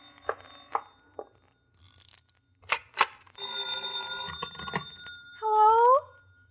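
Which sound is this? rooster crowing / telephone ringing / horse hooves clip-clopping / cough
telephone ringing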